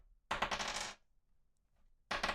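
Dice are rolled to pick the next topic. They clatter and rattle across a hard tabletop in a loud burst, go quiet for about a second, then a second clattering roll starts up.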